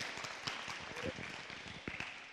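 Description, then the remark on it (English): A church audience claps for the mothers on Mother's Day in a steady, dense wash of many hands, with some sharper individual claps popping out above the crowd noise. It is fairly soft overall and lasts a couple of seconds. “And so there's two things that, yeah, we can clap if we want. Clap for all the moms.”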